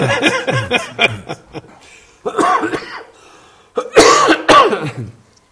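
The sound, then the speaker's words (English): A loud coughing fit from an asthmatic person after going between extreme temperatures: rapid bursts of harsh coughs in clusters, with brief pauses between them and a final pair of strong hacking coughs. “Let me explain my cough here. I'm asthmatic, and anytime I go from extreme temperatures, it makes it very difficult for me to breathe.”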